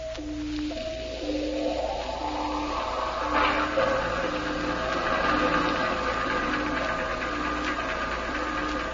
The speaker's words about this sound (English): Can you tell what it is we're following, Sparks? Sounds like a heavy cruiser, sir.